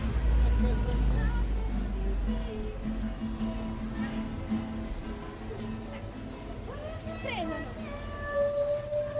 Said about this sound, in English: See the screech there, the bus breaking.